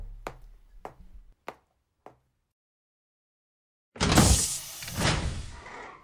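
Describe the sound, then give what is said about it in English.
Four sharp knocks land at uneven intervals, then after a short silence comes a loud, rough rush of scraping noise as a door is pulled open. No one speaks. “Not with the door open! Come in.”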